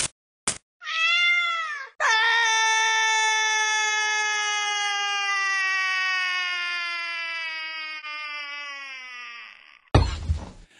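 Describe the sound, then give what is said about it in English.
A domestic cat meows twice, loud: a short cry, then a long, drawn-out wailing meow that slowly sinks in pitch, followed by a brief sharp burst of noise. “Just one twist of her magic Monroe piercing and she turns into a cat.”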